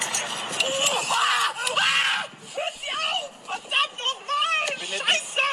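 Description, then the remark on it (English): A man screams and wails in pain in shrill, high-pitched bursts, loud, breaking into strained, cry-like shouting throughout, as paramedics work to remove his hand, which he glued to the ground himself. “I have the translation for you coming up, but first, let's again listen to his girlish screams.”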